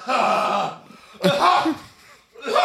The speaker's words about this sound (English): Sorry, I was clearing my throat.